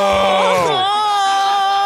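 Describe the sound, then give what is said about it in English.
A loud, strained scream that drops in pitch then holds as a sustained anguished wail for nearly two seconds; it sounds like someone voicing a man's agonized scream as he drops his gun and clutches his head. “The government guys raise their guns like they're going to shoot her, but then they both drop their guns and start screaming and clutching their heads.”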